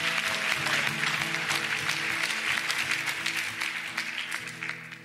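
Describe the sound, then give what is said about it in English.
An audience claps steadily and warmly for several seconds, welcoming a speaker as she comes up to share, a dense wash of applause fading slightly at the end, with keyboard music playing underneath. “Let's clap again.”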